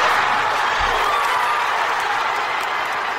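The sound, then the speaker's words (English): A large stadium crowd at a Wales versus England rugby match roars and cheers in a dense, unbroken wall of noise, loud and steady for about three seconds, with applause mixed into the din. “Listen to the crowd, Rob.”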